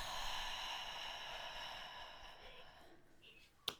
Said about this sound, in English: Is it like one of those funny yawns you can't quite shift? and I was like chasing it just then.